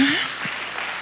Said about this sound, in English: Give yourselves a round of applause for some participation.